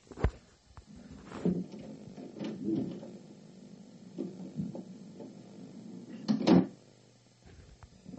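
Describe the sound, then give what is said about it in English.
A heavy barn door is dragged open, its wooden frame creaking and rattling with several sharp clunks and a loud bang near the end, with no talking. “All right, well, so we're going to open up this bond door and see what happens here, all right?”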